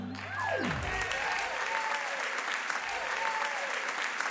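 Steady, loud applause from an audience, with a brief falling tone at the start and a few whoops rising over the clapping, continuing without a break to the end.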